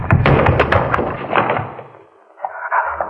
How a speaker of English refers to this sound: Oh, the shutter. Someone pushed the shutter, I almost...